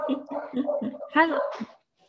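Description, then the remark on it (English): A dog, Maven, barks at a stranger at the door in a quick series of sharp barks, about five in a row, ending with two louder, higher yelps before falling silent. “Maven's doing barking.”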